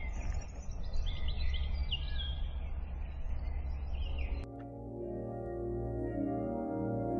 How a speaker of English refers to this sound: So the wind's died down. All you can hear is the sound of the birds, which is beautiful as you enter the woods. I wouldn't even like to attempt to try and describe which ones are which, but numerous bird songs are keeping me company.